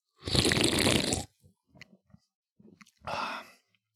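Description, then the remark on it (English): Someone slurps a light beer that smells like Natty Light loudly for about a second, followed by a few small wet mouth sounds and gulps, then a second, shorter slurp. No one speaks. “This will be a team slurp episode for all you people at home.”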